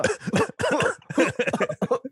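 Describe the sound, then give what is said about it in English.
Several people cough and clear their throats in quick succession, a dense burst of rough, hacking coughs with brief gaps between clusters. “Can we make the remaining 15 minutes just us coughing the whole time?”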